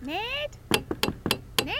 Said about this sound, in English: Stop tapping on the damn glass.